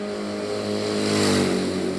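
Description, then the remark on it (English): A 490cc Norton motorcycle engine revs steadily, its harmonic drone climbing in pitch and growing louder midway before holding strong, with no voices present. “tested her own beloved machine, a 490cc Norton motorcycle.”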